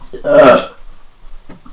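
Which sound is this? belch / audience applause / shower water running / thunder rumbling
belch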